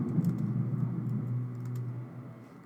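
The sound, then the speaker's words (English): Soft, irregular clicks of typing on a computer keyboard, fairly quiet, over a steady low hum with no one speaking. “Hold on, I'm typing right now.”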